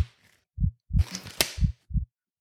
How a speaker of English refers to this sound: So first of all, to the diagnosis clinic, and I'm just going to, as usual, slap on the gloves and clear my throat. 2 seconds, everyone.